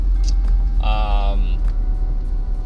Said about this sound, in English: Oh, shoot. Well, this isn't good. Not the results, the traffic. Oh, shoot. What the hell? Oh. All right. This is not good. This is not good. It's backing up way too early.